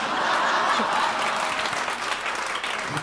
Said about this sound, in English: And if something incredible happens, then it's like a laugh into an applause, okay? And so you can kind of take that laugh and parlay it into an applause. So let's practice that in one, two, three.